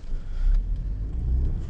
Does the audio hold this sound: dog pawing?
no